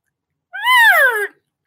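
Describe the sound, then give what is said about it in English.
A person demonstrates a normal cow elk sound as used in elk calling: one loud, nasal mew lasting under a second, rising slightly and then sliding downward in pitch, with no talking around it. “But you're going to do your normal cow sound.”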